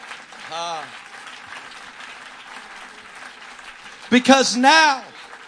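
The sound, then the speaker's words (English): A crowd claps steadily in a dense, continuous patter, with a short shout early on and louder voices cheering over the applause near the end. “Come on, let's just stop and clap our hands right there.”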